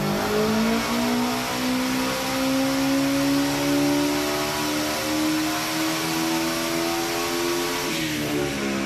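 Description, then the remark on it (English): A little red Subaru Impreza development car, codenamed Betty, built to rev to 12,000 RPM, screams at sustained high revs, its loud buzzing whine climbing slowly and steadily in pitch for about eight seconds before abruptly dropping off near the end. No one speaks. “codename Betty, the 12,000 RPM development car, the Impreza. Oh, the little red Impreza, yeah. Little red Impreza, revving its ass off.”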